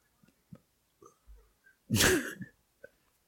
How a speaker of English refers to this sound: Sneezes there. Into his hand and goes for a handshake.